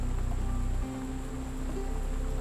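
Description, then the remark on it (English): Steady rain falls at night in a forest in a continuous soft hiss with a low rumbling undertone, fairly quiet and even throughout, with no voices. “The sounds of the rain are becoming louder now.”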